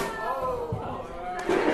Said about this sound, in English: That was to keep you. That was to keep you awake. In case you don't know what happened in the recording, I knocked down the music stand. That's to keep you guys awake.